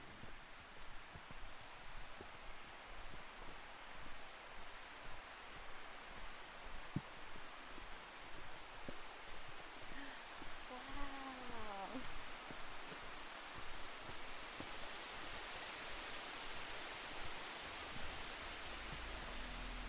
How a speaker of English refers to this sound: After about an hour, or maybe it was an hour and a half, we finally reached the waterfall, and it was pretty epic.